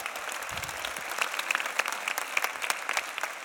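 Steady audience applause, a dense wash of many hands clapping with sharp individual claps popping out, sustained evenly at moderate loudness throughout.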